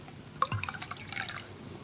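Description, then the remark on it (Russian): Liquor is poured into a glass, a brief run of light gurgling splashes and drips with a soft clink at the start, fairly quiet, with no one speaking. “Ну так наливай, раз обещал.”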